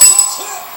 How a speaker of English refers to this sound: Hope that bell is not piercing your ear, is it?